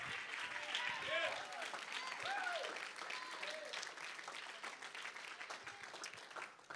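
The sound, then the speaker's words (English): An audience claps hands in dense, sustained applause for several seconds, with scattered voices calling out and cheering over the clapping before it gradually thins. “If you believe that, won't you clap your hands?”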